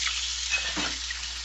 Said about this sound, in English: There's water. That's me, sorry. Washing my hands.